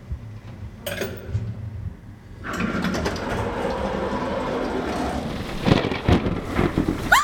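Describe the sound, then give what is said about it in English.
A low thunder rumble gives way to a sudden, steady downpour drumming hard on the airtight glass roof of a laboratory, with a few sharper cracks and taps rising near the end; no voices. “Oh, it's just a wee storm, my dear.”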